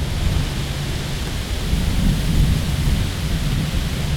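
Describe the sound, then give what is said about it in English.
Trees rustle in the wind during spells of wind on a prairie loop trail inside wooded surroundings, a steady, dense wash of hissing noise over a deep, low rumble of gusts that swells slightly midway, with no voices. “The prairie loop is only immediately inside the wooded surroundings, making for lovely sounds of trees rustling during spells of wind, as occurred while I was in the loop.”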